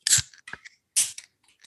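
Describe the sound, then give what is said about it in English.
Two cans of Poppy soda, raspberry rose and peach tea flavors, cracked open one after another, each a sharp, bright snap with a brief fizzy hiss, separated by a few softer metallic clicks and a short pause. “I'm going to crack them open, try them.”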